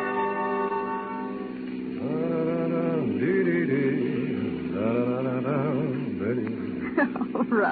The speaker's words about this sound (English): Oh, darling, you've been humming that all day.